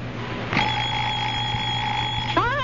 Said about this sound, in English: 4 a.m., time to go fishing. I'll murder that alarm clock. Oh, it's a wonderful alarm clock. Big Ben never forgets to get you up. I'll pull the plug. Big Ben doesn't need electricity. I'll batter its batteries. No batteries.